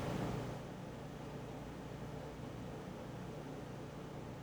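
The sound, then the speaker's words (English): A car engine catches with a brief louder burst, then settles into a low, steady rumble as the car pulls out, heard faintly with no voices. “I think I just heard the car start.”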